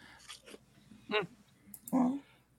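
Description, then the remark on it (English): A puppy lets out a few short, high-pitched whines and yips, with brief pauses between them and faint background noise. “You gotta train your puppy to give the merch announcements.”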